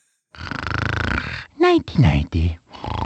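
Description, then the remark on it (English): A cartoonish voiced snore of Mario from the Nintendo 64 game Mario 64: a long rasping inhale, followed by a few short sing-song sleepy mumbles, then the snore starts again. Loud and alone, with no other sounds. “This is a sound file from Nintendo 64, Mario 64.”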